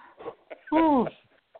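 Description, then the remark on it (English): A dog lets out a single loud, drawn-out whimper that rises and falls in pitch, lasting under half a second, with softer murmuring sounds just before it. “The same dog. That's funny, man.”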